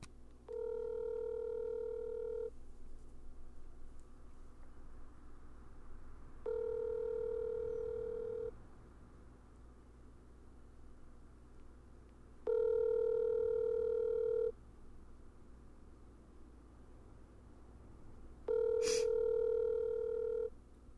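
Ringback tone of an outgoing phone call heard over a speakerphone: four steady tonal rings, each about two seconds long, separated by roughly four-second pauses, with no one talking.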